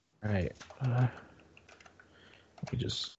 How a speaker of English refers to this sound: Yeah, I'm typing that right now.